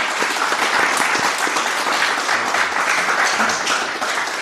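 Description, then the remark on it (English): An audience bursts into sustained, steady applause for Balaji and Glenn, a dense wash of many hands clapping at once that holds a constant loudness throughout without letting up. “Please give a huge round of applause for Balaji and Glenn.”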